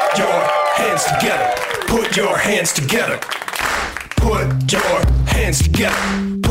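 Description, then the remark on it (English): A live comedy show crowd claps and cheers for comedian Ian Carmel and the other performers at the show's close, with whoops and shouting voices rising over dense applause, before upbeat music kicks in and carries on under the fading noise. “Ian Carmel, everybody, let him hear it. And you can just keep it going for everybody else on the show.”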